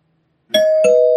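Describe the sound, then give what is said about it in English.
A spoiler-warning bell sound effect rings out loud and clear, struck twice in quick succession like a ding-dong chime, its bright tone sustaining after a moment of silence, with no voices. “So to actually get into that, you may want to throw down the spoiler bell.”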